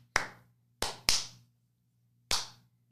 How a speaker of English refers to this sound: Shall we clappy clap? I don't remember how to do this. It's been a long time. Clappy clap!